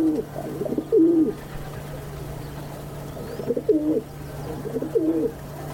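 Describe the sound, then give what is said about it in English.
Rock doves roosting on a windowsill at the water's edge by Lake Pichola in northern India coo in soft, throaty bursts, a cluster near the start and two more rolling phrases later, over a steady low hum. “By northern India's Lake Picchola, rock doves roost on a windowsill at water's edge.”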